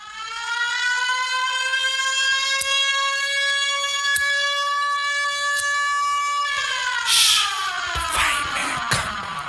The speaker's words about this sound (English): We have the fireman music intro right there